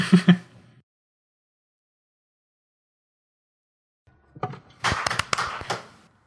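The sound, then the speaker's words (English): A short burst of ceremonial hand claps marking the start of a show, then a long pause before a louder flurry of sharp, overlapping claps rattles on for about two seconds and stops. No voices. “And the ceremonial claps have subsided, and we may now begin the episode.”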